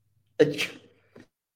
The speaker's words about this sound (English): Excuse me, I had to cough. The pollen has gotten – here's another update. The pollen has gotten bad.